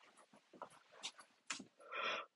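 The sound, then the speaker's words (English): Heavy breathing in quick, uneven huffs that build to a longer, louder rasping exhale near the end, with no talking. “I'm sorry, now you're just hearing a bunch of breathing, and I hate that for you.”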